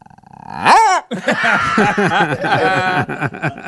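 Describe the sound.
A person's voice imitates a dog, starting with a sharp, swooping yelp, then a quick run of short barking sounds in an uneven rhythm.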